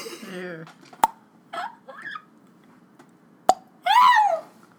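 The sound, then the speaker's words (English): A voice imitates water droplets as ASMR with a handful of mouth-made plops: two sharp clicks, some short watery blips, and a final bending, bubbly bloop, spaced unevenly across a quiet background. “and I'm here to give you some water droplet noises.”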